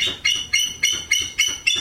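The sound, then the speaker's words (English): A bald eagle named Ben, a resident of Return to the Wild, a raptor rehabilitation facility near Nashville in Brown County, calls in a rapid series of six high, thin piping notes, evenly spaced and fairly loud, with no talking. “Ben the Bald Eagle is just one of the residents at Return to the Wild, a raptor rehabilitation facility.”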